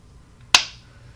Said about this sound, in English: Should we do a 3-2-1 clap? Just for a couple clap? Of seconds. 3-2. Okay. Wait. 3-2-1 clap.